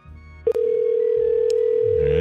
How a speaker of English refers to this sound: All right, let's see what happened to this number. I'm going to try it. Whoops, here we go. It's ringing.